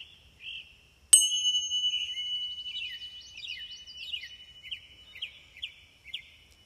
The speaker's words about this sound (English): So take a deep breath. Ring the bell.